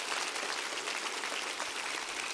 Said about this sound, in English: Why don't you clap your hands real big and just thank God because you're in the house today.